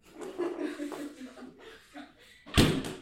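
A refrigerator door shuts with a single solid, thudding slam near the end, after a couple of seconds of low murmuring voices and soft chuckling.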